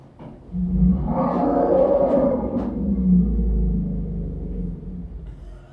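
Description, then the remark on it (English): A deep, resonant elephant rumble, the elephant way of saying hello, swells up and holds for about five seconds, low and throaty with a slight rise and fall, loud with no talking. “So this is how you say hello in elephant.”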